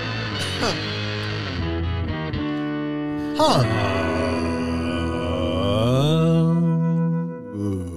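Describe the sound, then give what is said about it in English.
A loud guitar amplifier hum drones steadily, thick and buzzy, with the tone swelling and bending in pitch over several seconds before fading near the end. “Nice hum there”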